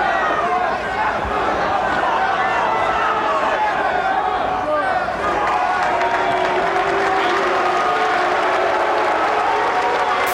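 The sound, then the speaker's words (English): A large crowd at an ECW wrestling event boos loudly and continuously as the wrestlers shake hands, a dense wall of jeering voices with scattered shouts and clapping mixed in, sustained at full volume for the whole stretch. “And which the crowd boo.”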